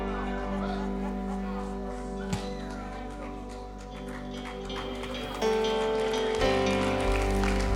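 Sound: audience clapping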